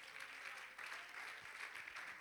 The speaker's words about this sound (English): Come on, somebody clap your hands and give God praise.